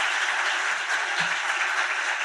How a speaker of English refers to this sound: Can you give her a big round of applause for me? That'd be great.